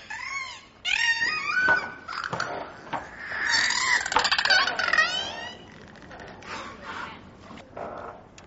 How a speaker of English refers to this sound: The dolphins are making intense noises, louder than the students have ever heard before.